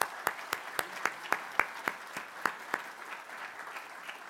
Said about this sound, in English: And I hope you will join me in a round of applause for the Society for their sponsorship.